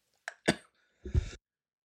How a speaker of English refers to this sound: Sorry, coughing here.